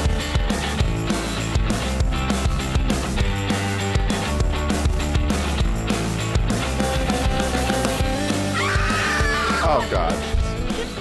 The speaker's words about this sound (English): That was quite a scream coming into that. I don't even care. Wow, what was that scream?